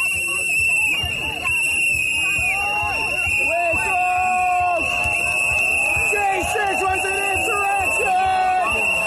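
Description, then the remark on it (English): A loud, chaotic rally crowd assembled by the New York Young Republicans Club shouts and jeers continuously, swamping Marjorie Taylor Greene's speech, while a shrill, steady whistle-like tone cuts through the din for the whole stretch. “speech as it would have been heard by the crowd assembled by the New York Young Republicans Club.”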